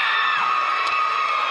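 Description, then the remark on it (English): A loud, steady game-end buzzer drones for the full moment, its flat tone over a roaring crowd of cheering and shouting spectators, ending a middle school basketball game at Battle Creek Middle School as Whitthorne beats Spring Hill 46-38 for the Maury County Conference Championship. “Buzzer sounds.”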